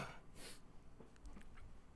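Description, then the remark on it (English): A single short, breathy sniffle through the nose from a man who has just come in from outside after taking out the garbage, fairly quiet, followed by faint clinks and soft background noise with no talking. “Pardon my fucking sniffles, man.”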